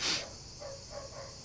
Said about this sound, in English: You hear that shit? There's a dog in our podcast. The dog thinks it's his turn.